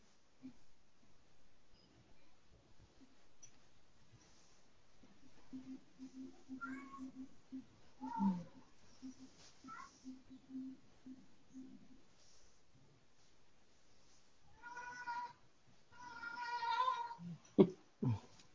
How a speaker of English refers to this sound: Sorry, that's my cat. Oh, really? It sounded like a leg. It sounded like a little baby. Yeah. He wants me to play with him, so he's walking around with a fuzzy ball in his mouth, meowing at me.